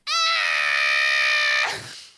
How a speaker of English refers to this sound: Wild. That was the blood-curdling scream from before.